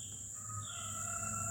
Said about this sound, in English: Now, this sound. Is there a rooster crowing in the morning? This is pretty, yeah.